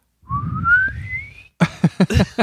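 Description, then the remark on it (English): A voice imitates a penny-whistle fart: a thin whistled tone climbing steadily in pitch over a low buzzy rasp for about a second, followed by several short, loud vocal bursts. “It sounds like a penny whistle. Like the pitch goes up as the, yeah, as the fart continues.”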